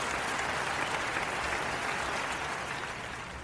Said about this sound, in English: Malik Cunningham's in the house tonight. Try it. Clap it up.